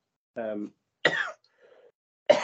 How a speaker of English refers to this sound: I've been coughing for ages, now I'm coughing again.